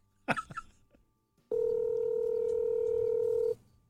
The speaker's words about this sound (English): Let me call your phone and don't answer. Do you want to hear it? Yeah. Okay. Right. Don't answer your phone.